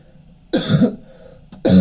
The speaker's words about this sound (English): I am so sorry for coughing all the time